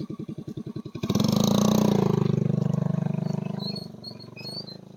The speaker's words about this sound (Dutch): Heel even een scooter passeren.